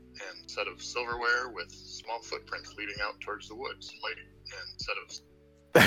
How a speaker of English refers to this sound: Well, that was an interesting echo. Norm, that looped.